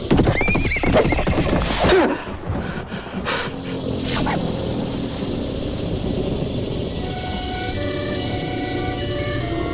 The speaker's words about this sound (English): Sleepy Hollow kicks things off with a horse-drawn carriage. A man is going down the most Tim Burton road in the history of cinema.